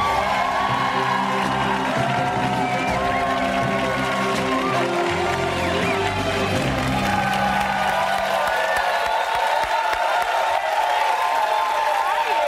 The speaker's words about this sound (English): Chi-town? Is that what you shouted? Yeah, that is what you shouted. Nice, okay. You roll with a posse. This is nice. It's a Chicago thing.